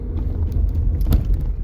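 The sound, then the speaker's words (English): A car passes by on the road, a steady low engine and tire rumble filling the moment, with a few faint clicks and swishes on top and no talking. “Oh my god, this car, people don't know how to drive either.”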